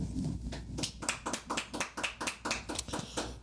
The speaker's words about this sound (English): So that's two awards that goes to the High Coast Podcast. Make some noise, clap it up.